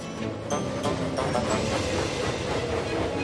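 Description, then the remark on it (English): Train engines hurry out of a station, rumbling steadily, their dense mechanical roar punctuated by rhythmic clanks and clicks, with no voices present. “The engines hurried out of the station.”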